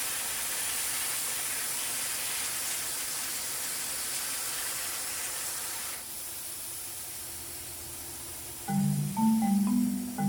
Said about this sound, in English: Chemical shower complete.